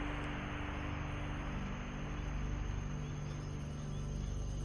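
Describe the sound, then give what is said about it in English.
A steady, unbroken hiss of static fills the whole stretch, loud and even, with a low electrical hum underneath and no voices. “And then there's the hiss of static, as it is something that has been torn away from you.”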